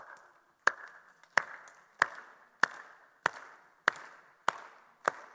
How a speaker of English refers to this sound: Now watch this. I'm going to start clapping. I want you guys to clap with me. Ready?